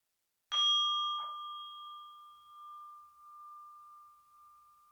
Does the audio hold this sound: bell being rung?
yes